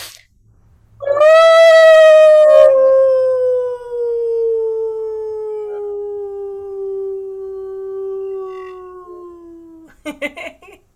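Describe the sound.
A person imitates a wolf howling at the moon, one long sustained note that starts strong and slowly slides downward for about nine seconds, loud, ending with a brief breathy sound.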